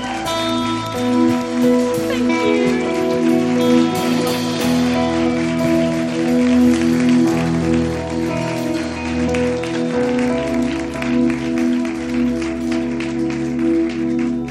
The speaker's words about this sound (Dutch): And I want you to give her a really big hand as she comes up here and speaks. Ik wil dat je een groot applaus geeft terwijl ze naar voren komt om te spreken.